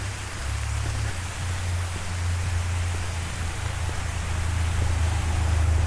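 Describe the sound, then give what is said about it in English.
Heavy rain pours down steadily outdoors near a gazebo, a dense, continuous hiss with a low rumbling hum underneath, loud throughout with no voices. “So, yeah, the rain's coming down pretty hard.”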